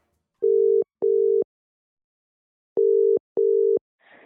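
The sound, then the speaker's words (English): A telephone ringback tone for an outgoing call to a local journalist: two pairs of steady electronic double rings separated by a pause, clear, with a faint rustle at the very end. “So we're going to phone her and see if we can have a chat. So let's make that call.”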